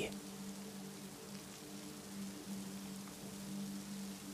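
rain falling

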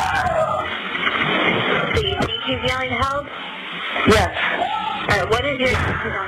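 screams

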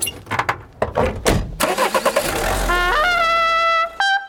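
car engine starting

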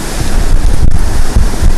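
waterfall rushing water

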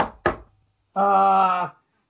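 knocking on a table

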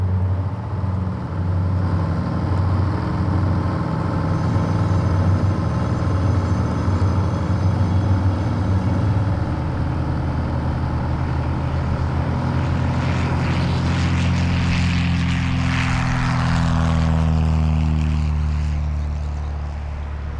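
airplane engine

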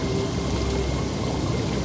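water pouring

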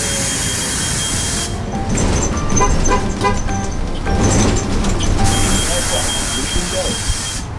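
city bus arriving

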